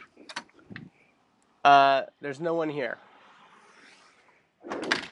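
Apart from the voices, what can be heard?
front door being opened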